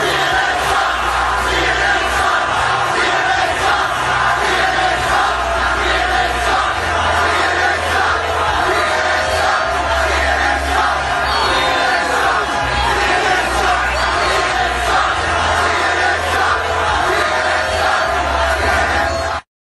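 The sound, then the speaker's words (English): A large crowd screams and chants continuously for about twenty seconds, shouting "fake news" at CNN reporter Jim Acosta as he tries to do a live report from a riser; a dense, loud roar of many voices with rhythmic shouted bursts and a low rumble underneath. “There's part before that that they're screaming fake news and all this.”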